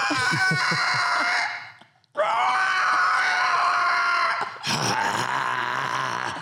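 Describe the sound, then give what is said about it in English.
A voice imitates the roar of Rodan, the giant monster, in three loud, harsh, high-pitched screeching bursts, a short rasp followed by two long sustained cries with a brief break between them. “What kind of sound did Rodin like have like a roar?”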